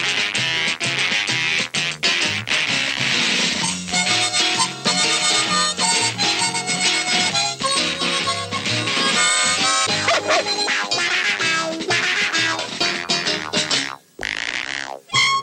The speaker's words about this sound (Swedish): Det är temat till Rabalder, en brittisk barnserie om en hund och hans granne Tråkmåns